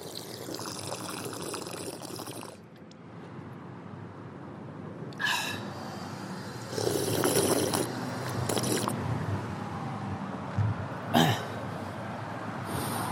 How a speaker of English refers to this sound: I'm gonna drink some water here if I can figure out how. No, that wasn't it. How's this work? Here we go. Oh, I just sprayed water on myself.